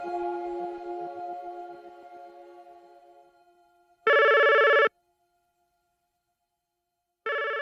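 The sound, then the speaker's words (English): A telephone rings in loud electronic bursts separated by a few seconds of silence, with no one picking up. It is the phone of 73-year-old Eugene Garner, who did not answer it throughout the day on May 21, 2004. Fading tonal music precedes the first ring. “His sister was trying to reach out to him, and he was not answering the phone.”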